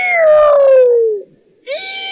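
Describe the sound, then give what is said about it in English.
A voice imitates an eerie night-animal screech: one long, loud wail sliding downward, a brief silence, then a second shrill, harsh cry starting up, unaccompanied. “We were in a meadow, and it was night, and these things started making these crazy screeching sounds all around the meadow.”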